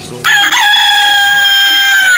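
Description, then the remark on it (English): A rooster lets out a loud crow that starts abruptly and holds a sustained, strained harmonic call for about two seconds. “That's a bird.”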